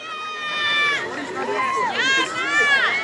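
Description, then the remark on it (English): A soccer crowd cheering as a carded player comes off the pitch after a foul; many overlapping high voices shout and whoop with rising and falling pitch, fairly loud and continuous for about three seconds. “Crowd is cheering though.”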